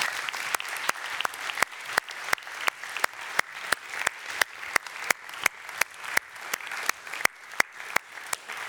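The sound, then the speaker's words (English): Sustained audience applause for a woman walking down to the front, with dense, steady clapping that carries on evenly throughout, bright and crisp, with no voices breaking through. “She's walking a long way, so give her a long round of applause as she comes down here.”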